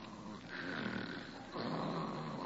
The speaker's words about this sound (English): Holy smoke, she snores. Oh, no, she never told me about this. With a whistle yet.